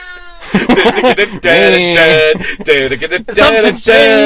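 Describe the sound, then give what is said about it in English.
A cat meows loudly in a run of long, wavering, drawn-out yowls with short gaps between them, presented as the sound of Ecto One from Ghostbusters. No one speaks. “The sound of Ecto One. My cat is in fact Ecto One.”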